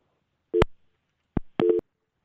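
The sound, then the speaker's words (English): A telephone busy signal after a radio show caller's call dropped: a few short, buzzy tones pulse on and off with brief gaps, fairly loud, with no voices. “Well, it sounds like we lost Frank, but that's okay.”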